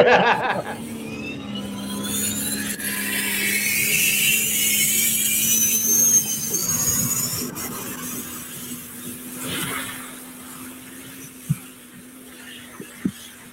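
A tractor engine roars steadily with a low, constant drone beneath a harsh, high screaming whine, then eases off toward the end, where a couple of sharp pops cut through.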